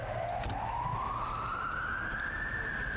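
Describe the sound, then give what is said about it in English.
A police siren wails, its single tone climbing slowly and steadily over a constant low rumble of background noise, with no one talking. “Sirens. Is that my neighborhood or is that”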